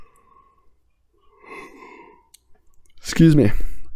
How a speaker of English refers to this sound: Excuse me. Wow, had a little yawn.